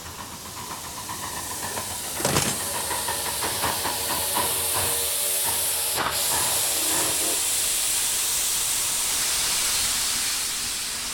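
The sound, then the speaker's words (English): A steam train hisses loudly and steadily, with a sharp clank near the start and scattered mechanical knocks and rattles under a broad, continuous wash of steam. No one speaks. “I got a train for us.”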